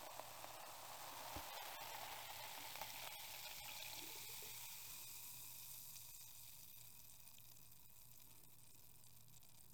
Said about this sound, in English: I'm gonna pour it into the steel pint. Very carefully though.